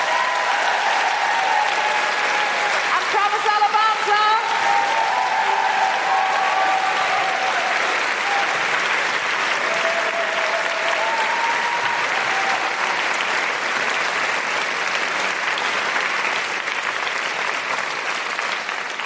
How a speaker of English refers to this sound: I really, really appreciate you coming out tonight. A big, huge round of applause for Holly Harrison-Mullane.